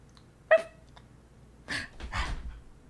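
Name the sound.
dog whimpering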